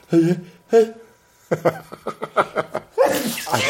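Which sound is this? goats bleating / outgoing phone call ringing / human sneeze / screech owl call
human sneeze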